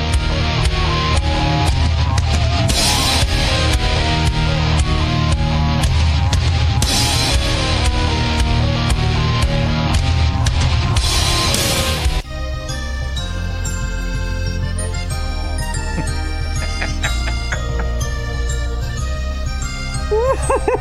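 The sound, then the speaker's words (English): Generic royalty-free instrumental music that Twitch played in place of a live concert stream, with no voices: a loud, dense band section with a driving beat for about twelve seconds, then an abrupt shift to a quieter passage of sustained, ringing tones. “they started playing some royalty-free music, which is what you heard there.”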